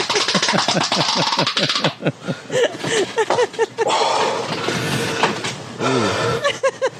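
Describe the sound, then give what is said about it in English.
Heavy, labored breathing of a man straining, loud, with rough rhythmic huffs and strained voiced groans running almost continuously. “Why the breathing? He has to breathe hard.”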